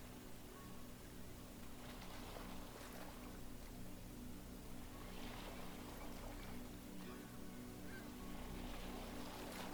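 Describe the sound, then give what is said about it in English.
Seagulls call overhead in a few scattered bursts over a steady low droning hum like a boat engine running throughout. No one speaks. “You can hear the soft calls of seagulls overhead.”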